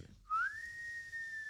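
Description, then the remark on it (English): A single prolonged whistle rises sharply at the start, then holds a steady, slightly wavering tone for over a second, fairly clear with no talking. “"Whew," said Tommy, and gave a vent to a prolonged whistle.”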